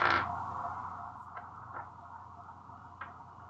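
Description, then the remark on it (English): A sharp clatter opens, followed by a few small, scattered clicks as dice tumble and settle on a surface during a tabletop game, rolling a 19. It's fairly quiet, with no voices. “Did you just roll dice”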